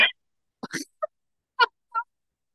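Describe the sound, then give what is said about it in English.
A duck quacks in a handful of short, nasal bursts spaced irregularly over a couple of seconds, clear with silence between calls and no one talking. “Me opens the door. Yeah, this duck.”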